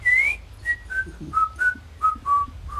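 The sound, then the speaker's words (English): A person whistles a short tune, a string of clear notes stepping downward in pitch with brief pauses between them, over a low background rumble, with no talking. “And if you see me join this lady, but if somebody else seems to be following us, you walk by and you have to whistle a tune.”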